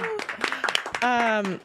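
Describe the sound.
A short burst of audience clapping for a panel, sharp and fairly loud, with voices cheering over it and a sustained whoop rising above the claps near the end.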